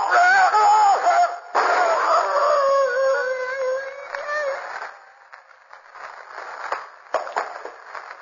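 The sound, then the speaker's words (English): A wolf howls loudly, drawn-out wavering wails that rise and slide in pitch for several seconds, then fade into a quieter, muffled rustling background with no one talking. “The wolf's coming for me.”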